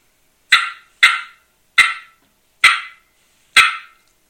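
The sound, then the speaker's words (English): An imitated wild turkey hen cutting call, like that of Eastern or Osceola hens: five sharp, loud, high clucks in an uneven, quickening-then-slowing rhythm, each a brief harsh pop, with no talking. “See, your normal bird around here, as far as the Eastern or the Osceola, will cut like this.”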